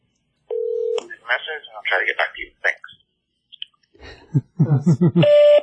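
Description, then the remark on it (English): A phone call: a steady electronic tone sounds briefly, followed by a stretch of muffled voice over the line, ending in another sustained beep tone. “Let's see if he answers. He won't answer.”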